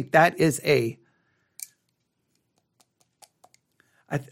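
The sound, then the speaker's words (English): Pencils click and tap faintly as they are handled, a few small, irregular knocks spaced across a quiet stretch, with a voice speaking briefly before and after. “I got pencils in my hand. I'll put them down. I always start picking them up when I start thinking.”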